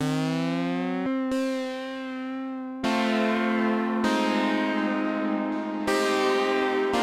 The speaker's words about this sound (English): So this demo, this first demo that I sort of did in my studio is a lot slower and sounds completely different. But I'll play a little bit of it just so you can hear.